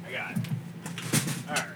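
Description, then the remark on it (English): A door is pulled and pushed open in a few short scraping, knocking bursts while voices murmur faintly in the background. “We got the door open.”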